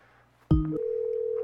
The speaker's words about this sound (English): I hear ringing. Yeah, they have a phone.